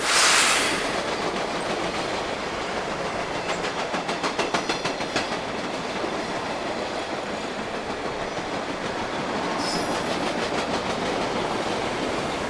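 A train rumbles steadily along the tracks, its wheels beating a rhythmic clickety-clack over the rail joints, with a couple of brief hissing bursts rising above the continuous roar.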